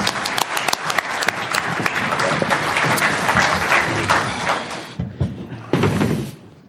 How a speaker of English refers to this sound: Let's give our panel members a round of applause. Good job.